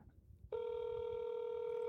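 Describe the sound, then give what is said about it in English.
A Google Voice phone call ringing out: after a brief low murmur, a steady electronic ring tone starts abruptly and holds at one even, buzzy pitch to the end. “Google will try to connect us.”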